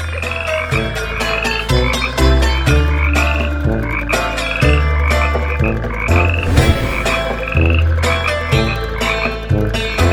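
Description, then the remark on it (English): A loud, dense chorus of frogs croaking continuously, with many overlapping rapid calls and a deep steady rumble underneath, no voices. “So God sent out frogs in plague number 2.”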